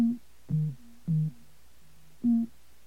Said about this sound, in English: When you hear those musical tones, it's processing. So the voice should speak any second now.